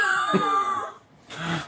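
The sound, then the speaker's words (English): A person imitates the croak of a weirdly dog-like giant salamander named Bella at a sacred grotto on an island, with a drawn-out, wavering throaty groan, then a brief pause and a shorter raspy, breathy croak, fairly loud. “It's a croak, like it croaks kind of like, oh, it was like, Bella.”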